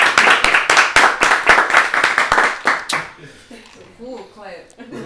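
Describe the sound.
A crowd claps loudly for about three seconds in quick, uneven bursts, applauding a man who has just become security, then the applause dies away and a man starts speaking over the fading tail.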